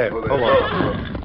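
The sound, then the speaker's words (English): A horse whinnies loudly, a single shrill, wavering neigh that lasts just over a second and trails off at the end, as riders heading toward the town of Littlefield are signaled to halt. “Then they continued toward the town of Littlefield on the horses belonging to Sheriff Lawton and his deputy.”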